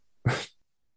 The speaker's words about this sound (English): Sorry, fellas. Dogs are in here raising hell.